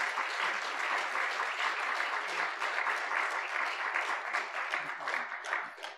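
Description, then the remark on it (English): Steady applause from a church audience giving God a round of applause fills the whole stretch, a dense, even wash of many hands clapping at once without pauses or distinct individual claps. “You can give God a round of applause.”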